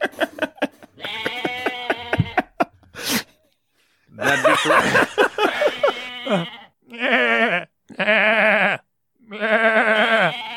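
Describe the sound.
A goat bleats loudly and repeatedly, a string of wavering, nasal cries broken by short pauses, with a brief spoken phrase near the beginning.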